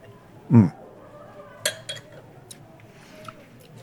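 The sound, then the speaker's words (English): A giant wine glass of red wine being handled: one heavy low thump, then a few short, bright glassy clinks and taps at irregular intervals, fainter than the opening knock, with no talking. “So let me grab this and see if I can do it without taking the giant wine glass and knocking the microphone, which is going to be a revolving theme with this show.”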